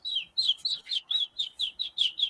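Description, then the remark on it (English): A person whistles a bird imitation: a rapid series of about ten bright, descending chirps at a steady rhythm, clear, with no talking. “who's actually tweeting at us right there”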